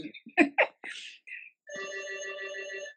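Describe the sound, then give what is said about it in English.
A telephone rings with a steady electronic trill lasting over a second, clear, following a few brief bursts of muffled talking and clatter. “Do you have to go answer the phone?”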